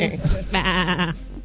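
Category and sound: animal, sheep bleating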